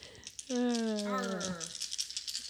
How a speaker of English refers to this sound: I'm going to arrange the dice that I have now rolled in no particular order. Into an order.